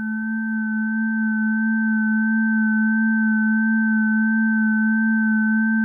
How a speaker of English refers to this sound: The static became very bright, and I heard a high-pitched frequency getting louder very quickly.